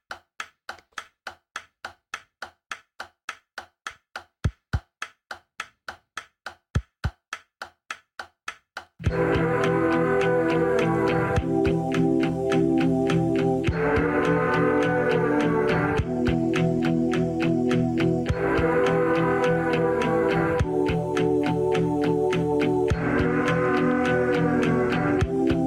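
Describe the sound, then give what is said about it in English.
A steady, dry tapping pulse opens, then loud layered music bursts in with a recurring swooping, trumpeting elephant-like effect that bends in pitch every few seconds. “There's that sick elephant sound that originally garnered the name.”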